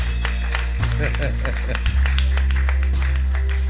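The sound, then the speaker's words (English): An audience claps hands together to celebrate Jesus, a dense, steady wash of overlapping claps, with voices murmuring and a low sustained hum underneath. “Clap in and celebrate Jesus.”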